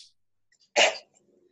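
A single sharp sneeze bursts out of near silence, a brief explosive blast of breath that fades quickly into a faint exhale.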